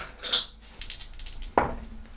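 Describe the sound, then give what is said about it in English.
A die is rolled for an accuracy roll in a game, clattering across a hard surface in a quick series of sharp, bright clicks and rattles, ending with a firmer knock as it settles on a 9. No one speaks. “And so I'm going to roll for accuracy for the bee.”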